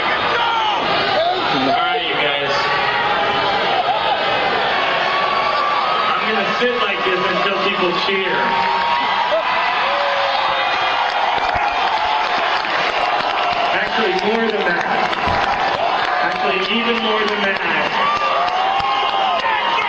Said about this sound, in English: Sat down. He's like, "All right, I'll just sit until you stop booing."